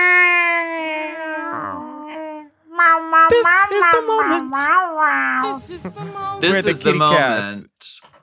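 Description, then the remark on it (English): A long, tonal wail opens, followed by several fairly loud meowing cries from a cat that rise and fall in pitch in quick succession. “Ooh, kitty in the cave, honey, kitty in the cave.”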